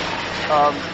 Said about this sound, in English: And here we go, another nice plane coming over because we're on the flight path. We are literally right under this. It's I know my planes, unfortunately. It's a Q400 Luxair. Coming in from Luxembourg.